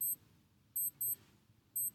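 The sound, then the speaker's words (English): A timer alarm beeps in quick high-pitched bursts, pairs of short electronic tones repeating, clear over a low background rumble. “That's your timer?”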